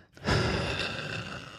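A single long, noisy breath, rough and congested with a faint rattling texture, heard alone without any talking.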